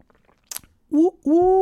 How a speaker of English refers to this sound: I used to hate on the medium roast. I used to be only a dark roast kind of guy. But let me sip of this and let's see.